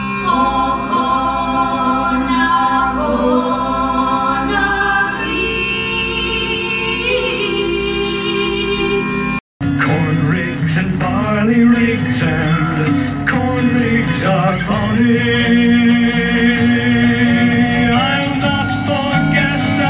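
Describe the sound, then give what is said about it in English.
A folk song from a film soundtrack plays loud and full, with melodic instruments and sung lines. It cuts off abruptly for a split second midway, then continues with a busier, denser passage. “And I'll insert some clips of some of these songs because I think they're total bangers.”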